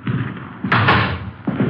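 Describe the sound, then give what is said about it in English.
The front door of an apartment building is pushed open and swings shut, making two solid, fairly loud thuds about a second apart, with a brief rattling clatter between them. “Front door open?”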